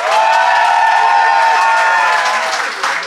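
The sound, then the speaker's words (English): An audience votes by applause in a mock courtroom-style debate, clapping loudly and steadily, dense clapping mixed with cheers and a few high whoops, sustained for about three seconds before easing slightly at the end. “But if you think that Flatshare and Will are in the right, I'd like you to applaud now.”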